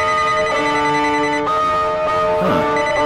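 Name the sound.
telephone ringtone ringing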